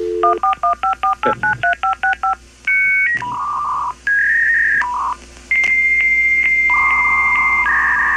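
machine, dial-up modem connecting

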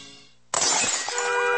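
sound effect, glass shattering

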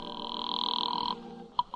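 household object, telephone call being placed

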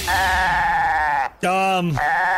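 animal, goat bleating sound effect

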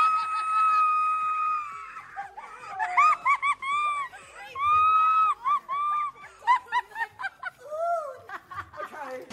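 human body sound, woman screaming

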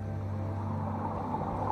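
animal, blue whale song

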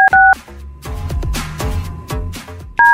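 signal or alarm, telephone dialing tones

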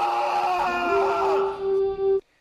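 human body sound, man screaming in agony

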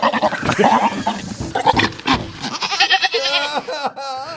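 animal, goat bleating

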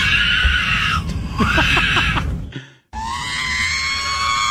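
human body sound, baby screaming

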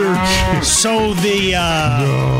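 animal, cow mooing

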